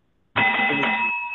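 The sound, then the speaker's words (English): A distance-teaching bell rings out suddenly and loudly, holding a bright, steady metallic tone that lingers without fading much. No one speaks over it. “My distance teaching bell.”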